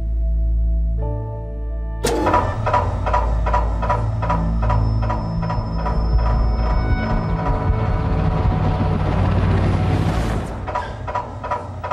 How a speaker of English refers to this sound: We also recorded MRI, where it morphed into the MRI into the helicopter blade flops.